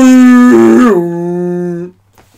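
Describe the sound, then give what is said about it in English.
A single loud foghorn blast, seemingly imitated by a voice: a low, steady, buzzy tone that dips slightly in pitch midway, holds for nearly two seconds, then cuts off into silence. “that was a foghorn.”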